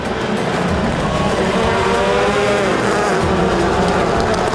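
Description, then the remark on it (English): About ten rally cars, including a Subaru, roar loudly and continuously in a final race after a thunderstorm, engines revving and whining, with a hiss of spray and tire noise on the saturated, slippery track throughout. “10 cars on a saturated track with unknown grip is a recipe for carnage.”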